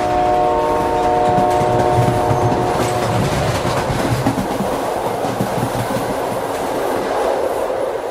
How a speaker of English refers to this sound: So I made like a general train library with diesel and electric from Europe